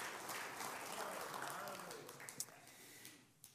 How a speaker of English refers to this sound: Jesus is raised up from the grave. Give the Lord another clap off. That's awesome.